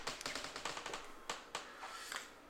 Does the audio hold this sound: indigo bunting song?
no